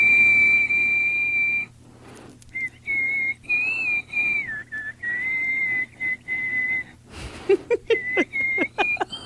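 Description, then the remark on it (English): A woman who holds a record for the loudest nose whistle nose-whistles a song melody, a clear high tone sliding between notes in phrases with brief gaps, fairly loud, ending with a few breathy puffs and clicks. “There's also a woman who has set a record for the loudest nose whistle.”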